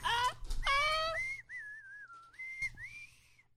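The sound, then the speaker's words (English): A voice imitates a singer's high-pitched whistle-register singing, starting with a few breathy vocal runs, then sliding into a thin, piercing sustained tone that wavers up and down for a couple of seconds. “Can you do the part at the end where she's like, you know, she's like dog whistling?”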